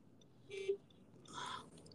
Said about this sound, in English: Sorry about that. I'm in my car. For listeners, I'm in my car, and I had a beep right there at somebody who was being a jerk who cut me off.